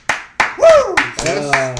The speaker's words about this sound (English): Let's get a round of applause.